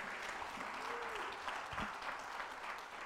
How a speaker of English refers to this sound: Let's give Larry a round of applause for sharing today.